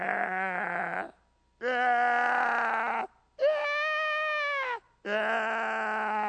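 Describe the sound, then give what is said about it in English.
A person's voice imitates a sheep's bleat, four drawn-out wavering baa calls of about a second each, separated by short pauses, fairly loud with no other sounds around. “Sounds like a sick sheep, but that's my best.”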